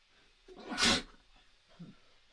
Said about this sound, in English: I had to sneeze.